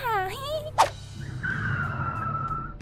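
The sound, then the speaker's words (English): The mayor's car pulls into the driveway with a wavering engine whine, a sharp brief screech of tires, then a steady high squeal over a low rumbling idle, moderately loud. “Oh, geez, that's the mayor's car pulling into the driveway.”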